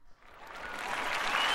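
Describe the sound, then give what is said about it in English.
A crowd breaks into applause, the clapping swelling quickly from a faint start into a dense, steady wash of hands that keeps getting louder over a second and a half. “And the crowd loves you too.”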